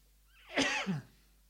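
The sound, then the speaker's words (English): A single short cough into an elbow, muffled and fairly loud, with a brief throaty tail and no talking around it; the speaker's throat is getting dry from talking. “That's my responsible coughing technique.”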